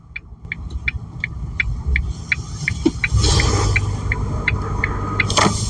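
A pickup truck, a commercial vehicle, rumbles steadily, then its engine grows louder and rougher as it pulls away, with a regular clicking tick repeating over the engine noise throughout.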